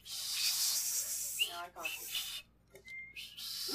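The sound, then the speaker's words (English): A person's thin, high-pitched whistle sounds briefly near the end, faint beneath a steady rushing hiss, with a few murmured vocal sounds earlier. “Like a high-pitched whistle?”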